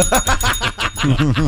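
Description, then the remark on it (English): A small bell inside the dark room of a soundproof cabin, rung by someone asking to leave about 30 seconds after going in, rings rapidly and insistently, loud, its quick strikes running together in a continuous jangling burst with no one speaking. “The cabins are soundproof, and there is a bell inside the dark rooms for anybody who wants to leave.”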